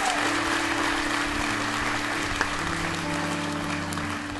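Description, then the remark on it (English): An audience applauds a baptism steadily, a dense wash of clapping from many hands that holds at an even level for several seconds, with a low hum running beneath it. “Yeah, we can applaud it.”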